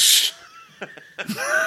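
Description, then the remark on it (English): A sharp, hissing exhale opens, followed by a few short, forced coughs in quick succession and a strained, theatrical vocal sound, fairly loud, as mock Lamaze breathing. “That's the worst Lamaze I've ever heard. You cough so hard, you cough out a baby.”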